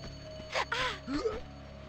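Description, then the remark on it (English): A few breathy pants and strained grunting gasps from strangers in the dark in Lara's house during a home invasion come in a short burst of about a second, then fade, leaving a low steady hum behind. “And there are these strangers who are grunting and panting in the dark places of Lara's house.”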